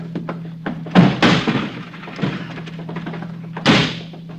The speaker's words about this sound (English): It's locked. I don't have a key. All right, I'll kick it in.